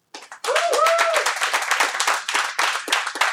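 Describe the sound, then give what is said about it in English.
A debate audience breaks into steady applause to vote 'no' on whether January 6th was an existential threat to democracy, many hands clapping in a dense, crackling patter that stays loud before thinning slightly toward the end; a brief whoop or cheer rises early on. “And if your answer to that question would be no, we'd like to hear your applause.”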